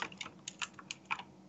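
Rapid computer keyboard typing, a quick run of light, uneven clicks with no voices, fairly soft.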